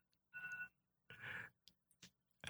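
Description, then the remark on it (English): A timer goes off to signal that the time is up, with two loud, steady electronic beeps, each about a third of a second long, followed by a few short, sharp clicks. No one speaks. “And that's my timer letting me know that, hey, the time is up, but we're going to go another few minutes, because I definitely want to get all the information in this particular episode.”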